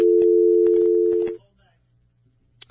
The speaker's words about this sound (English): I had just a quick little phone difficulty as I just got a dial tone in my ear.